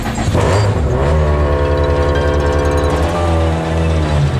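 Rally car engines rev loudly and continuously, their rising harmonic whine layered with a rough, rattling idle as the cars pull away, sent out after service ends.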